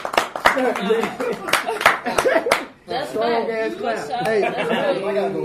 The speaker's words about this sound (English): I'm a clap for that shit.